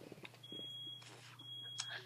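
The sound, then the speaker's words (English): A home smoke alarm, set off while something was being cooked in the oven, sounds two sustained, high-pitched electronic beeps separated by a brief pause, fairly loud against a steady low hum, with faint voices in the background. “My parents were making something on the oven, and the fire alarm just went off like it does.”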